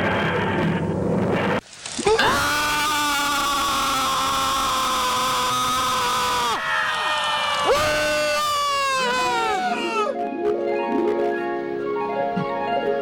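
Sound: crowd screaming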